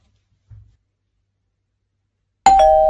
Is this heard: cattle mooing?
no